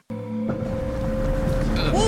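A boat engine kicks in abruptly and keeps running with a steady, deep rumble and droning hum that grows slightly louder, with a brief warbling tone rising over it near the end.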